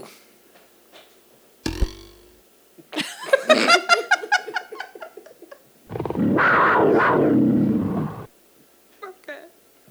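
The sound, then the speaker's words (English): A sharp knock, then a series of guttural, throaty animal growls and snarls, followed by a long, loud, rasping roar. Together they blend bear, big cat and dog into one beastly effect. “I don't have a bear sound, so I just went with... One of those is a hybrid of bear, cat, dog.”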